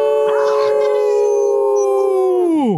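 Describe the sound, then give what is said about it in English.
A group of people howl together like wolves, one loud, sustained note held for a couple of seconds before sliding downward at the end, with a bit of shouting at the start. “We call ourselves the Wolf Pack, right? So we howl.”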